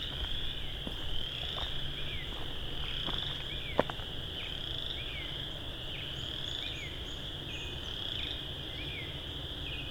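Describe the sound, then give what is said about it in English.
A tree frog chorus trills steadily throughout, a dense, high-pitched pulsing drone with repeated chirpy notes over faint background noise and a few scattered clicks; no one speaks. “I think it's a species of tree frog.”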